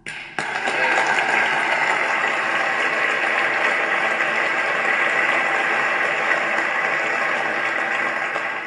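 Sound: audience clapping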